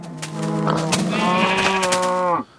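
A single long, drawn-out cow call, a steady bellowing moo lasting a couple of seconds, loud, then cutting off abruptly, from cows, chickens and pigs kept in the middle of a house. No one speaks.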